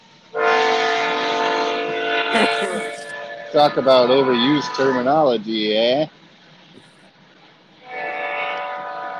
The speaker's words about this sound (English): We're taking a train break. Yeah, train break. Train break.